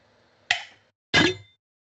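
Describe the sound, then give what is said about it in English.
Two hollow metallic clinks of metal water bottles, one half empty, knocked together in a toast, about half a second apart; the second is louder and rings a little longer. No voices. “It is, because it does like that hollow metal sound.”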